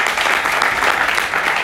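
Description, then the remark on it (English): An audience claps steadily, a dense, even patter of many hands that holds at a fairly loud level throughout, with no voices rising above it. “We don't even know how big the clap is.”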